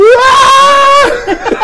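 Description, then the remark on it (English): A person imitates the panicked scream of someone swinging down a rope: a loud, sustained, slightly rising yell held for about a second, then breaking off into a few shorter, choppy vocal bursts. “and it sounds kind of like a blood-curdling battle scream, but it's more of a, ah, shit!”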